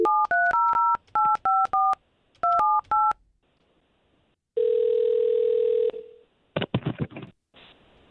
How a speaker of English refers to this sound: Okay, well, we're going to take the phone number that you gave us and we're going to try to give him a call and see if we can't get the both of you talking, okay?